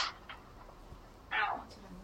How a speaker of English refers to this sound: Hear the sword banging?